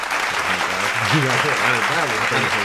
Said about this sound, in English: Let's throw a clap sound effect. So we got 100 IG followers.